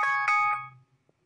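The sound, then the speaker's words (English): A phone rings with a short electronic chime: three quick bright tonal pulses that fade out within about a second, fairly loud, with no one talking. “Say that again. It didn't come out. The phone.”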